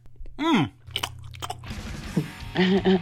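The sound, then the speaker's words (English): Crisp crunching of a crunchy snack eaten straight from the box, a few sharp bites followed by a rougher stretch of munching, with short voiced murmurs at the start and end. “Tasty, crunchy, good for snacking right out of the box.”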